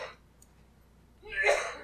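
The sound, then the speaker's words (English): A single harsh cough bursts out near the end, somewhat muffled, after a brief breathy sound at the start and a quiet pause. “I hear coughing in the background.”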